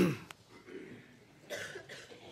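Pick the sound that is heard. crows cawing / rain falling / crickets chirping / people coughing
people coughing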